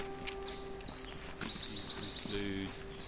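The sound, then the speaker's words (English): Several birds, among them crow, jay, magpie, blackbird, song thrush, robin, dunnock, blue tit, great tit and long-tailed tit, sing and chirp at once in a park, with a quick repeated run of high notes standing out among scattered tweets over a low steady background hum. “Carrying crow, jay, magpie, blackbird, song thrush, robin, dunnock, blue tit, great tit, long tail tit.”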